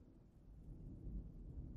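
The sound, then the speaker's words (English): A soft rumble of rolling thunder from a light thunderstorm, deep and continuous, swelling slightly toward the end with no voices present. “and I have a light rolling thunderstorm in the background to help you sleep.”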